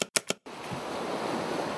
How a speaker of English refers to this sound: Or how about some gentle waves?